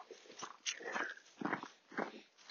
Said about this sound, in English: And now back on, you can hear the crunch of the snow.